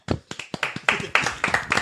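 Rapid, sharp hand claps, roughly ten in under two seconds, in a slightly uneven rhythm like a brief burst of applause from a few people. Each clap is crisp and fairly loud.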